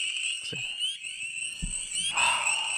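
A dense chorus of frogs croaks and trills without pause, a steady high-pitched layered drone with a couple of soft low thumps underneath and no voices.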